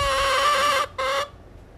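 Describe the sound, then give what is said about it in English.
A hen named Elsie squawks loudly twice in the coop: a long, harsh, nasal call followed by a brief clipped second squawk, both bright and piercing, with no voices. “That's Elsie yelling at me.”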